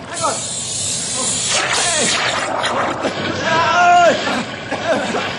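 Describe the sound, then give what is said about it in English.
A boat hull is punctured by an underwater snag in a swift current, releasing a loud, steady hiss with rushing, splashing water, while shouting voices rise over the noise near the end. “Snag punctured the boat.”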